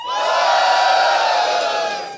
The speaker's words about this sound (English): So when we talk about some songs later on, I'm going to say the title and I want you to cheer on how much you love it.